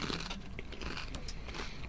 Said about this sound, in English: And then the Thins chip itself, as the name suggests, thin chip. have a munch on that.